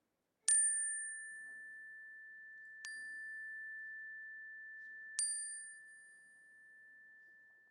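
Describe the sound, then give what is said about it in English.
A chime is struck three times at unhurried intervals during a prayer in a worship service, each strike bright and metallic, leaving one clear, steady tone ringing on between strikes. No voices, just the chime sounding alone. “If you wish, I invite you to speak them aloud as the chime rings so that we can hold them with you.”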